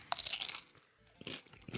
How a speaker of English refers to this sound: I'm still chewing on Doritos over here. I don't know about you. They're pretty good.